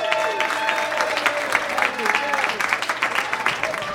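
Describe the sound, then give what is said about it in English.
An audience at a stand-up comedy show applauds as the next comic is brought on, with dense, steady clapping that holds at an even loudness for about four seconds, with some shouted voices and whoops mixed into the crowd noise. “You stopped clapping pretty fast.”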